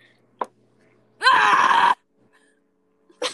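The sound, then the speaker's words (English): A single loud, voiced sneeze-like outburst, a person imitating a sneeze, lasting under a second and framed by a short breathy catch before and a faint sound after. “Achoo. Why do I do that?”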